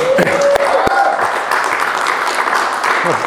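A crowd applauds steadily, a dense wash of many hands clapping at once, loud and sustained throughout, with a few sharper individual claps and faint voices mixed in.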